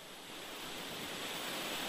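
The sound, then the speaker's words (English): Steady, dense hiss of phone line noise after a dropped call, a continuous wash of static that swells slightly louder toward the end, with no voices. “We might have lost him.”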